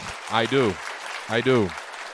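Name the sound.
round of applause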